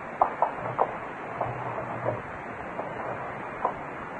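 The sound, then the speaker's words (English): Windows being opened and shut to test whether any of them squeak: a few scattered knocks and clicks over a steady hiss, with a brief low rumble of a sash sliding in the middle. No one speaks. “Well, what are you opening and closing those windows for?”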